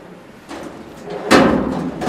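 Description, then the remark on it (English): A storage drawer, one of rows of sliding drawers holding a collection of Chanel shoes, slides along its runners: a softer scrape first and then a louder, sustained rumbling slide, with no one speaking. “Laid out in rows of sliding drawers.”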